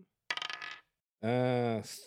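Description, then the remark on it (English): A small real die, rolled for a wisdom saving throw, clatters and skitters across a hard surface in a quick half-second burst of rapid clicks, followed after a short pause by a steady, humming tone. “You're going to get an 11 on this real dice.”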